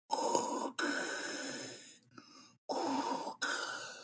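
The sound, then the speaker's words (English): Loud, hissing breaths through a sleep apnea mask worn by a man with breathing issues, drawn in and pushed out in about four long, airy cycles separated by brief pauses, with no talking. “I gotta take off my sleep apnea mask. I have some breathing issues, but I'm a lot better now.”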